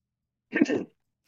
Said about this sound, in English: That wasn't as good as I wanted it to be, but you did clear your throat.